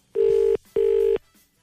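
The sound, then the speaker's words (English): Two long, steady electronic ringback tones with a short gap between them, heard on an outgoing phone call after dialling a number, while waiting for an answer, loud and clear with no talking. “Just punching in my digits here. It's ringing anyway.”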